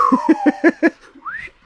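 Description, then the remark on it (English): A slide whistle glides slowly downward beneath five quick, rhythmic chuckles, then swoops sharply upward in a short, bright rise near the end. “This slide whistle of approval.”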